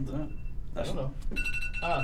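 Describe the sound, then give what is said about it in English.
A phone alarm, set for 6:30, starts sounding partway through, a bright electronic tone ringing steadily at moderate loudness while people keep talking over it. “But it's I put my alarm for 6:30 a.m.”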